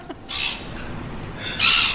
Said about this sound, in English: That's actually a seagull.